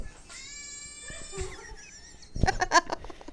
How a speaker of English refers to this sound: I'm glad you said goat noise. I did this video 2 years ago. That's the sound they make.